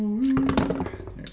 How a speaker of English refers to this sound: Can you really drop dice in here? Oh, yeah. You drop it from the top. You drop it yeah. Right here. That's awesome.